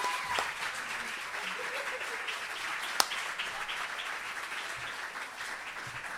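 Sustained audience applause fills the room, a dense steady wash of many hands clapping at fairly even loudness throughout, with one sharp louder clap near the middle.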